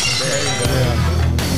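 A glass breaking sound effect: a loud shatter that bursts in and sprays bright tinkling shards for about a second, with a faint voice murmuring underneath.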